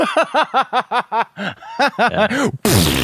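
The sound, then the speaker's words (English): A string of rhythmic, chuckling vocal bursts ends in a loud, spluttering blast as a voice imitates a hot, wet fart. “He can cut a hot, wet fart.”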